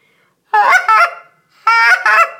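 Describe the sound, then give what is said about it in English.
A double cluck on a goose call: two pairs of loud, back-to-back honking clucks, each pair quick and sharp, separated by a short pause, with no talking. “This is a double cluck. It's back to back. It shows a little bit more excitement.”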